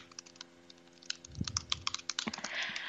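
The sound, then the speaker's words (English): Rapid clicking of keys on a computer keyboard as someone types a message, an irregular burst of fairly quiet taps continuing for a few seconds with no voices. “Sorry, I was typing a message.”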